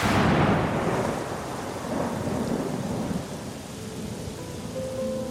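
A deep, rolling rumble of thunder swells at the start and slowly fades, with steady rain hissing underneath throughout. No voices are present.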